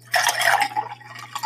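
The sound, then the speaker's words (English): Riesling wine from France, 2016, glugs and splashes into a glass, a bright pour with a steady bubbling trickle that tapers off and briefly resumes near the end, with no voices. “Yes, I'm pouring a nice old glass of Riesling.”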